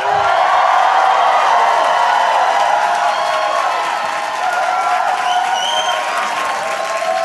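A capacity crowd at Gotham Comedy Club applauding steadily for about seven seconds, a dense wash of clapping with scattered cheers and whoops rising over it, loud and sustained throughout.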